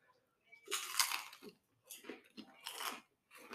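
Crunching of a pita cracker, loud, brittle bites followed by several rhythmic chews, each a sharp crackly burst separated by brief pauses, with no talking.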